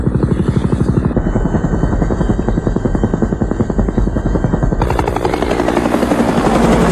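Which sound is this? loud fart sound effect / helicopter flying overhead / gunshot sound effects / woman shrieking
helicopter flying overhead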